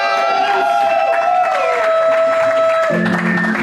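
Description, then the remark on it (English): A live crowd at Backswing Brewing in Chicago cheers and claps loudly and steadily, a dense wash of voices and hand claps with a few sustained, sliding whoops rising above the noise. “And now, the moment you've all been waiting for, make lots of noise, starting right now, rumbling and grumbling and making clapping.”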